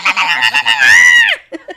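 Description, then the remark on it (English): A person lets out a silly, high-pitched squealing scream with a nasal, honk-like quality, made to get babies to smile for photos. It wavers, then rises and falls, followed by two short squeaky yelps. “And, like, in every live photo that we have trying to get them, you just hear me fucking, like, screaming or doing some shit to get them to smile, and it works.”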